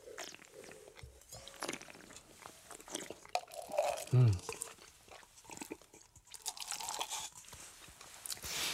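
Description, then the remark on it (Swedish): Wine is spat into porcelain spittoons during a wine tasting: a series of wet, sputtering splashes and mouth noises, with one louder gush around the middle and faint voices underneath. “Men det är ädla droppar som åker rakt ner i porslinet här, men jösses vad gott det var.”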